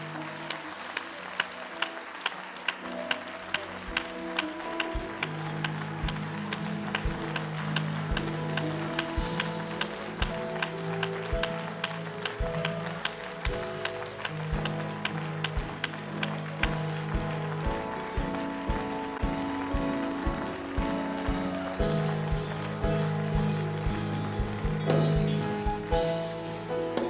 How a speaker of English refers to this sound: Do me a favor. Give God the best hand clap you've given him all night.